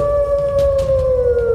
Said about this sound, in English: Nicuros watched in horror as the wolf tilted its head back and howled.